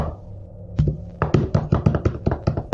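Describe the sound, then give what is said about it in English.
A quick series of about a dozen sharp knocks on a hard surface, knocking for Boggins, fairly loud, tapped out in an uneven rhythm after a short quiet start. “Yes, knock for him.”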